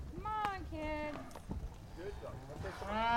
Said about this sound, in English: riding the fence and trying to push the cows out the open area into their fresh grass for eating this morning.